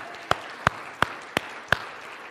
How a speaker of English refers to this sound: He's alive. Amen. Let's give him a clap. Hallelujah.